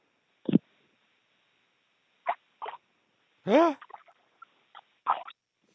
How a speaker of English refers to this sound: You want some ambient noise? Yeah, let me, I think I'll have to splash, but let me try.